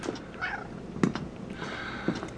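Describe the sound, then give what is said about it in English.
A cat meows twice, short drawn-out calls with a pause between them, fairly quiet, with a few faint clicks and taps in the background and no talking. “No, of course not. You're a cat.”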